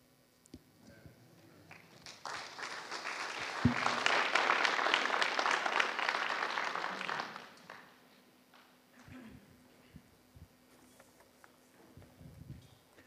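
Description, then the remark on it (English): An audience gives the presenters a round of applause in the morning, a dense burst of clapping that swells over about five seconds and then fades away, leaving a few scattered claps and quiet noise. “Let's give our presenters another round of applause for sharing with us this morning.”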